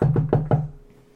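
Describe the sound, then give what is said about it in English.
Four quick, firm knocks on a wooden front door in a fast, even rhythm, fairly loud, each with a hollow thud, then a short fading resonance and quiet. “you hear a knock on your door.”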